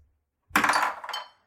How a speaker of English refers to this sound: Well, this is more for it gives me extra damage, not extra help in the hitting. So I'm gonna roll my dice.